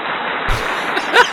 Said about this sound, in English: But anyway, we have my parents here. The applause is for you.